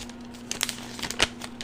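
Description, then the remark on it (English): Quiet paper crinkling and rustling, with a few sharper crackles as an envelope with stickers on it is handled and opened to get at a note inside; no voices, just a low steady hum underneath. “Oh, it's an envelope. It's a note. I love an envelope and a note.”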